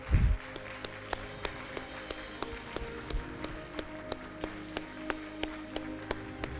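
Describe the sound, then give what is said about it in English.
An audience claps hands in a steady, even rhythm, about three sharp claps per second, over sustained organ-like chords that hold underneath throughout. “Clap your hands.”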